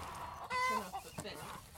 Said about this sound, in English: Hi, girls. We approached a long high tunnel where some of their laying hens spend the night.